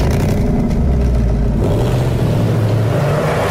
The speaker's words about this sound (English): And as a sharp contrast to the gray ad, we see a bright orange Ford Mustang leaving an underground parking lot.